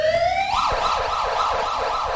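police siren

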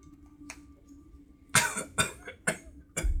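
man coughing

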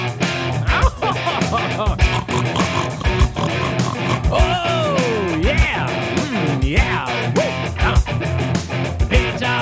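pig oinking

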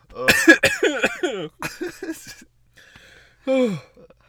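coughing fit

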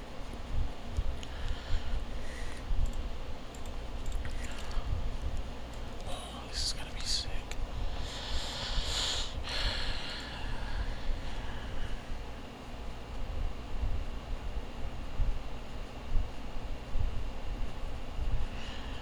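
air conditioner running

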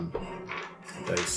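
dice being rolled

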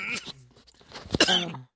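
coughing

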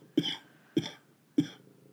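cough

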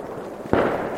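fireworks exploding

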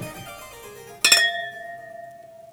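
glasses clinking

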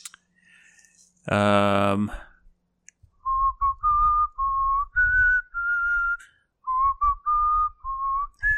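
person whistling a tune

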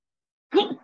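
sneeze

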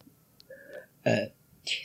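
burp

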